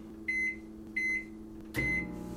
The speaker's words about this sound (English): Okay. It's off to the microwave with you. All right. Here we go. Mm-hmm. So 3:30.